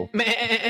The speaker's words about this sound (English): Before we get out of here, I just wanted to pull up our mascot really fast. This is Betty the Goat, if you haven't seen her.